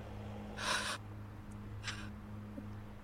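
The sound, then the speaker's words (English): Heavy breathing right into a microphone: one loud, rushing breath followed by a shorter, softer one, over a steady low electrical hum with no talking. “heavy breathing. Again, I think you're breathing into the mic.”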